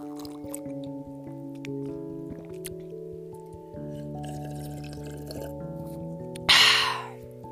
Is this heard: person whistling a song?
no